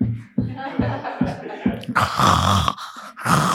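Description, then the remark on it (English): A rapid, throaty burble of wild turkeys gobbling in springtime repeats in quick pulses, then swells into a louder, rougher outburst, with no talking over it. “The turkeys are at it again.”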